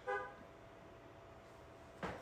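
Two short car horn honks from outside, a brief toot at the start and another about two seconds later, moderately loud over a low background hum.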